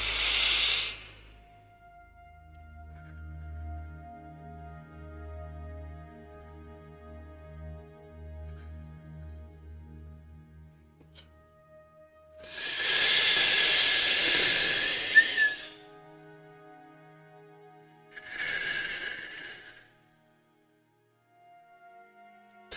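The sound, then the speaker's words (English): Deep, breathy mouth breathing demonstrated as a breathing exercise, going all the way in and all the way out: a brief exhale, a long rushing breath after a quiet stretch, then a shorter one, each a loud airy hiss with soft hum in the pauses. “I'm sorry for breathing through my mouth.”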